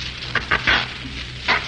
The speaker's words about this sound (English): He's slashing the seat with a knife, isn't he?